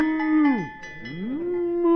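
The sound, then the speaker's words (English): A cow named Melinda, in a living room, lets out a long, drawn-out moo that dips low and swoops back up, with a cowbell clanking faintly underneath, fairly loud with no talking. “Get that cow out of my living room.”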